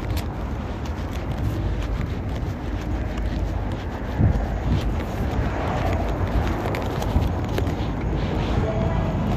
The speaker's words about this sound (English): Super windy, but it's not that cold.